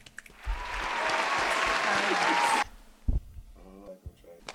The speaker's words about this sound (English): Let's get some applause.